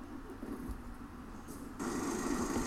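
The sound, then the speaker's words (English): A low, steady video game truck engine rumble idles quietly, then about two-thirds through it abruptly grows louder and brighter as the truck's engine starts and revs up and keeps running, with no voices. “I better start the truck.”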